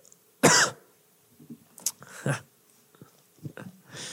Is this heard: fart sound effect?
no